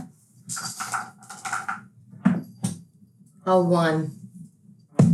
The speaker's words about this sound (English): I would like for one of you to roll me a D10.